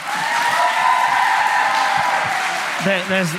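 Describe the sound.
A crowd applauds steadily, a dense wash of clapping with cheers and whistles running through it, and a voice shouts over the noise near the end.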